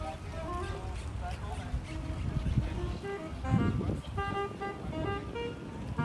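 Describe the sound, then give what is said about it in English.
A trumpet plays sustained, wavering notes outdoors in a park in Barcelona, over a steady wash of crowd murmur and wind, with the horn phrases growing clearer toward the end. “Parks welcomed trumpets.”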